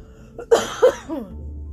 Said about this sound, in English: Oh god, it's affected me. You're infected. Ah, cough on me.